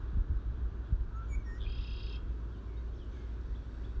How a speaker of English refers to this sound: There she is. That was the mother bird. Did you hear her?